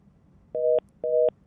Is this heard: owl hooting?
no